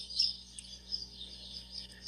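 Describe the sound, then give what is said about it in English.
A busy chorus of birds chirps and twitters continuously, the high, bright calls overlapping with a few sharper tweets standing out. No one speaks. “The birds got really excited.”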